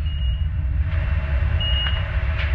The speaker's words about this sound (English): So if I were to move some of these dials, I can add more sound effects. So here's more interface sound effects.